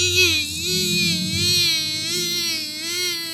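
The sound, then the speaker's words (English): A person sustains a buzzy, nasal drone, imitating the cicadas heard in Lawrence that week. The tone wavers rhythmically up and down for about three seconds at steady loudness, with bright overtones and no words. “It didn't sound enough like the cicadas.”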